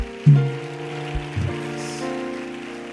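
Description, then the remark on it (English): An audience claps in a steady, dense patter that carries under sustained, low keyboard-like tones, holding at a moderate level for a few seconds with no voices. “I've told you that clapping is free.”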